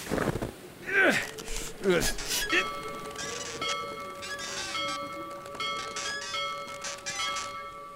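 A bell strikes six times, its clear metallic tones overlapping and sustaining into a steady hum, following a brief vocal sound at the start.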